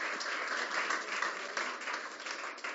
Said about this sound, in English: Can we have an applause for our scribe?